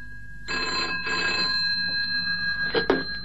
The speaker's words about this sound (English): At 9:30 p.m., my cuckoo poked his head out the clock door for a solitary peep, and then the phone rang.